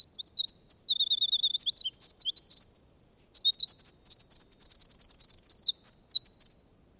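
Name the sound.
songbird singing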